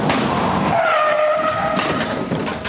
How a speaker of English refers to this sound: they throw this thing right down onto the hood of a truck that's going by, and it just fucking stops, hits the brakes, skids to a stop.